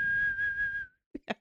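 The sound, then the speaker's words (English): A person whistles one steady, sustained note for just under a second, with breathy air beneath it, then it stops and a few short voice-like bursts follow. “That's a fucking whistle, though.”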